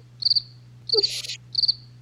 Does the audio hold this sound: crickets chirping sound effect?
yes